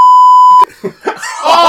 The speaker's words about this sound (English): Bleep. Why is he getting bleeped? Why is he getting bleeped?